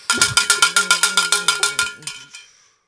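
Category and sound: signal or alarm, big bell being rung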